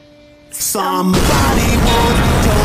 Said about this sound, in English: I love that they included, like, 7 frames of just fucking Maggie Gyllenhaal getting owned by just an explosion.